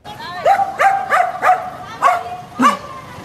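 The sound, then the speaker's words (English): A stray dog called Kersha in the former Soviet Republic of Georgia barks at cars so a group of children can cross the street safely, six times in quick succession, sharp and loud, with short uneven pauses between the barks over a low background rumble. “The dog, which the locals call Kersha, barked at cars to make sure a group of children crossed the street safely.”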